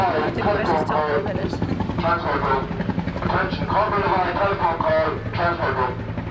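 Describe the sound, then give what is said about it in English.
A helicopter drones steadily overhead, its low, continuous rotor hum loud and constant throughout, with voices talking over the engine noise. “You will soon get used to helicopters, and you will never want to see or hear a helicopter by the time you get home.”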